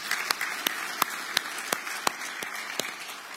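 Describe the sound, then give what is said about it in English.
A church audience breaks into applause for the 11 people baptized in 2021, a steady wash of clapping with a few sharp individual claps popping out, moderately soft, with no voices. “That's something to clap about.”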